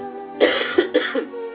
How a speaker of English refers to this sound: Hold on, I'm going to cough, though.